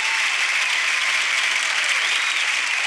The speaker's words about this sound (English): Let's give a round of applause to the good people of Winnekone.